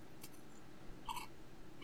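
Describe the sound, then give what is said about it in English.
A crisp bite into a cream-filled cookie with a hint of pumpkin spice makes one short, bright crunch, preceded by a faint softer click, against a low steady background hum with no talking. “There's that crunch. Yeah, they're crunchy.”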